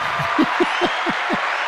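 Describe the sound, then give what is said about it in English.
Applause: a steady, dense wash of clapping with about five or six heavier claps standing out at an even, quick rhythm, fairly loud throughout and with no voices over it, celebrating someone formally accepting a new job. “A round of applause.”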